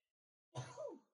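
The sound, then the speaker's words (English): One sudden sneeze after a brief silence: an explosive, breathy burst with a voiced cry that slides downward in pitch, fairly loud and lasting about half a second, with no talking. “Bless you.”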